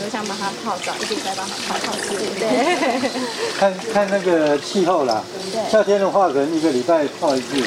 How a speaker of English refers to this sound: To water the staghorn ferns, they submerge them into a bucket of water.